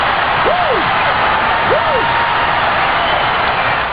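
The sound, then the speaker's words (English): A big crowd in Pine Bluff, Arkansas roars steadily at an arena basketball game during a timeout in the final seconds, a dense wall of cheering with a couple of rising and falling whoops or whistles cutting through early on. “Listen to that crowd in Pine Bluff, Arkansas.”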